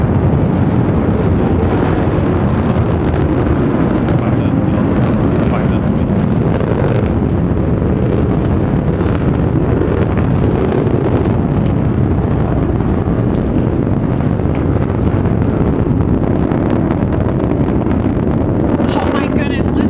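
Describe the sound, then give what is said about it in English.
A loud, continuous roar of the BE-3 engine of a New Shepard rocket lifting off with its first human crew in the West Texas desert, burning liquid hydrogen and liquid oxygen, fills all twenty seconds, a dense rumbling blast with crackling, wind-like turbulence that stays steady without pausing. “Beautiful burn on that BE-3 engine.”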